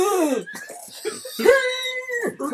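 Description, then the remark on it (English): A voice imitates the whimper of Toto, a sea lion: a few strained, moaning cries that slide down in pitch, then a longer wavering, nasal wail before a final short groan. “Toto whimpers as much as a sea lion can whimper, which I imagine is like...”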